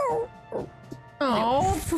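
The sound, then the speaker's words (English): High, wavering whimpers rise and fall in pitch: a short whine near the start, then a louder, longer run of quivering cries. “You hear the whimpering of a wolf, the whimpering of a dog, as it crushes it”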